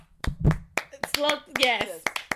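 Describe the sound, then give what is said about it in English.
About a dozen sharp hand claps in a quick, slightly uneven rhythm, moderately loud, while excited voices call out over them. “Clap it out.”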